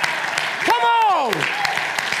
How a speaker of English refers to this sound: And why don't you try giving God about a 10-second hand clap and give him a praise?